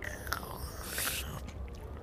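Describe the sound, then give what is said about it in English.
A quiet sip of coffee, a Four Lights Blend from Logical Coffee, a new roaster on the promenade: a brief airy slurp lasting about half a second, framed by small mouth clicks and soft handling noise, with no talking. “May I have a sip?”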